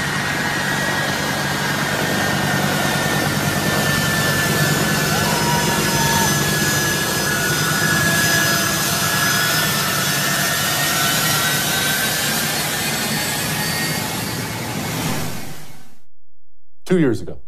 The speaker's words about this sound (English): Plane takes off. Those poor souls falling from the wheels as the plane takes off.